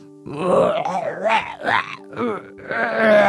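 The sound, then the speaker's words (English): A person vocally imitates a Bigfoot call with a string of loud, rising and falling groans and moans, several wavering howl-like bursts over about three seconds with brief pauses between them. “What kind of sounds do you think Bigfoot would make?”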